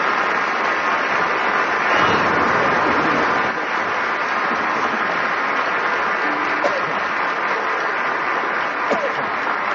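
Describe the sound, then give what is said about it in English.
A crowd applauds steadily, a dense wash of many hands clapping at once that holds at a loud, even level from start to finish. “Everybody's applauding.”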